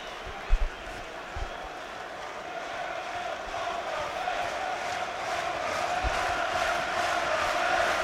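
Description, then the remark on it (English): A dense, continuous roar of the football crowd at Molineux stadium with nine minutes of the match to go, steady and broad, swelling slightly louder toward the end, with a few low thumps early on. “And the Molineux crowd, yes, I think, sensing that we're in a key moment now with 9 minutes to go.”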